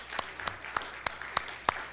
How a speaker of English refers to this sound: And if we don't take the opportunity at some other time, can everyone who has a mom just give a clap right now? Thanks.